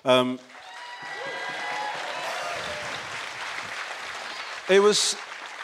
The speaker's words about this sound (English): The applause for the podcast was so much more muted than the applause for